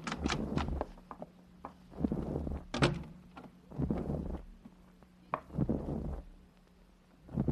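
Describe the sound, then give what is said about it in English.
An unlocked door being opened by police, with a series of sharp clicks and thuds from the handle and latch spread over several seconds above a low steady hum, and no one speaking. “The door's unlocked. Walk in.”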